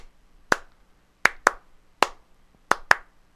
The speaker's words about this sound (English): It's all just beats. And it's and all they're doing is they're just like they got it. You know, they got a hand clap track.